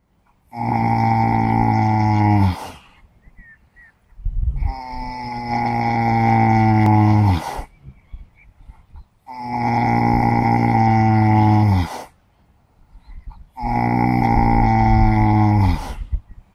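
A horse snoring: four long, loud, droning breaths with a rich, buzzing low tone, each lasting a couple of seconds and separated by short quiet pauses, with no voices.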